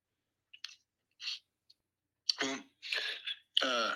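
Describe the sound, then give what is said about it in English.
Soft chewing comes in a few brief, irregular mouth clicks and smacks, followed by louder muffled vocal sounds, as if someone murmurs with food in their mouth. “I was chewing for a second.”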